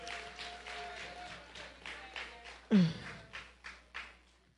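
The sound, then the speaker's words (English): A church group gives a round of applause for the nursery, with steady, moderately loud clapping that has a loose rhythmic pulse. A louder low thump briefly interrupts it, then the clapping gradually tapers off toward the end. “Let's give a round of applause for our nursery.”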